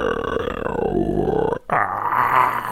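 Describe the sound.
A voice imitates the sounds a baby makes, called Rek'Sai growls or crackles: a long, rough, gurgling growl, a split-second break, then a raspier, crackling snarl, all loud and guttural throughout.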